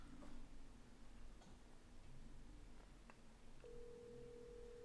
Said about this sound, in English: If he answers, it's ringing. Who are you calling him for?